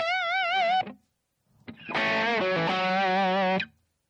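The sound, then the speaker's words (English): A dry electric guitar plays two short sustained phrases with a brief pause between them, each note ending abruptly with no echo or reverb tail. The tone is bright and slightly overdriven, and no voices are heard. “Let me put the reverb and the delay back on.”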